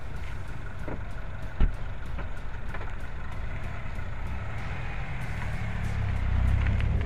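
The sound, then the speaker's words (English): Steady low road rumble inside a moving Cooper S with turbocharger, all-wheel drive and stiff sport suspension, punctuated by a string of quick sharp thumps as the tyres hit bumps, one louder jolt early on, and a resonant drone swelling toward the end. “But the impact on this car is very noisy inside here. There's a resonance, which I don't like about it.”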